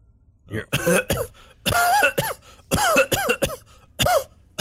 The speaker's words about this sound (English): you hear coughing come from the area you came from.